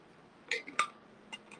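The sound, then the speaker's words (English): Someone sips water: a few short, wet slurps and gulps in quick succession, fairly quiet, with a small swallow at the end and no talking. “The traditional way, let me take a sip of water before I get into this part.”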